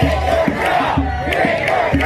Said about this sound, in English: Only a handful of officers were present when the group of marchers approached the building, and said officers quickly moved inside. As they did, hundreds of people chanted, "Quit your job!"